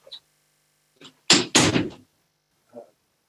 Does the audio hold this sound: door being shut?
yes